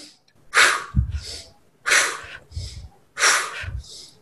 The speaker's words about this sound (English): Try it all together. Fanning the fire. It's a quicker yogic kind of breathing practice.